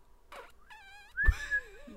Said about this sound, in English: Do it again. That's you. People on YouTube will know. That's okay. That's just exhaling. It is.